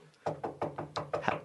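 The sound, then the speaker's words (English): A rapid series of about six or seven firm knocks on a door, evenly spaced, each with a short hollow thud, following a moment of quiet. “Who's at the door?”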